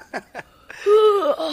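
A big, drawn-out yawn: two quick breathy gasps, then a long voiced groan that holds steady before sliding down in pitch and trailing off.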